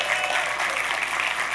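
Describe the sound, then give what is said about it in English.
An audience claps steadily, many hands blending into a dense, even wash of applause with no single beats standing out, loud and sustained throughout with no voices on top. “Why don't you give them a hand clap so they know you appreciate them.”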